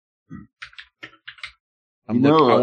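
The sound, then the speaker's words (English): A quick, uneven run of about six sharp computer keyboard clacks, fairly loud, followed by a person starting to speak. “I got to do something about this keyboard.”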